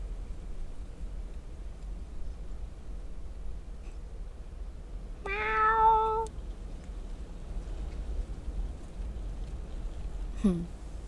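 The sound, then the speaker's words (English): The cat Ying Ying meows once, clear, over a steady hiss of background noise, followed after a pause by a second, shorter meow sliding downward in pitch, as it appears over a meadow where trees are blossoming. “We begin with Ying Ying the cat making an appearance over the meadow.”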